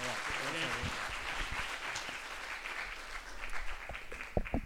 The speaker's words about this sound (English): Amazing. Thank you. Well, should we give Dave another round of applause?